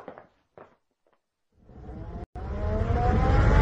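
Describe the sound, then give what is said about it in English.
A few soft, brief knocks, then the engine of Mr. Cavendish's car starts up and grows steadily louder, its droning pitch climbing as the car accelerates and drives off toward Cadminster. “We must take Mr. Cavendish's car and go down to Cadminster at once.”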